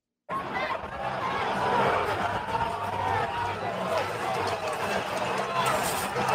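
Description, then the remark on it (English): A crowd of thousands roars as it overwhelms police, a dense, steady wash of many voices shouting at once, with scuffling and jostling underneath; no single voice stands out from the continuous loud din. “A crowd of thousands overwhelming police.”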